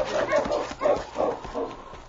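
A dog barks four times in a quick, uneven series, the barks moderately loud, with faint whimpering yips between them and no talking.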